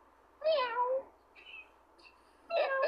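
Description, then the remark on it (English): A person imitates a cat meowing: two loud, drawn-out meows separated by a couple of faint, brief squeaks. No words are spoken. “Meow. Meow. See, I ain't saying one word. That we over here making sound.”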